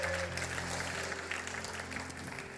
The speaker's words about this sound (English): Come on. Another big clap.